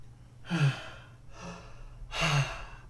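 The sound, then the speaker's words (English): Three breathy intakes: a sharp gasp, a softer shallow breath, then another strong, rasping inhale. No talking, just quick, uneven breathing. “My shallow breathing.”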